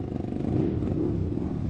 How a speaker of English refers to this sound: A motorcycle sidecar tour. That's what will make this more fun. What? And here's our ride now.